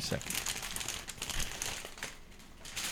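Loud, crackly crunching of spicy kettle-cooked potato chips from Sam's Club being chewed, a dense run of sharp brittle snaps and crackles that continues steadily without pause.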